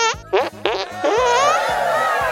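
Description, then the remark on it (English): A rapid series of wet, sputtering armpit farts, several short squelchy bursts followed by a longer buzzing one, loud with no talking. “I, Waffle, promise you, Floozeville, that with me as your mayor, goofing around will double, and armpit fart sounds will triple.”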